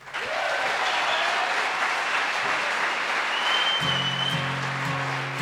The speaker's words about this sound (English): Without any further ado, I'll introduce the first guest of the evening. We'll give a big round of applause, please, to Andy Irvin.